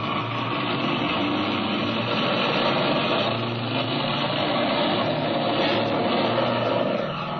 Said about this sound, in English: Mother, look, I think that's Jimmy's airplane, off to the west there, see? Your eyes are better than mine, child. I don't see anything. Yes, I'm sure it's their ship. I guess you're right. I can hear it now.